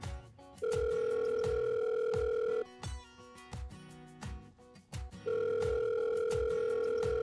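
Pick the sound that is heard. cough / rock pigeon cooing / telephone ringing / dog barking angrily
telephone ringing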